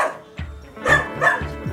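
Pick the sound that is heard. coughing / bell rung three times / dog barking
dog barking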